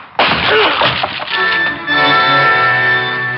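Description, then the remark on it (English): A sudden loud crash as a man's head smashes through a locked plywood door, with a second of splintering clatter, then a steady, sustained tone lingering until the end. “pulling plywood out of his scalp for the next week, but it got us in.”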